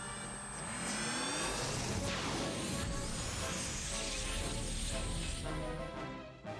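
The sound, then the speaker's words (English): A force field powering up: a loud, sustained electronic whoosh and hum layered with rising and falling tonal sweeps and shimmering high tones, holding steady for about six seconds before cutting off. “No one will think to look here for the source of my force field. It will be impossible to stop me from finding the lights of Orion for Scorpius now!”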